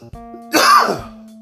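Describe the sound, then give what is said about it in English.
One harsh, rough cough, about half a second long, over a faint steady electrical hum. No one speaks. “Sorry about that. I got a terrible cough here.”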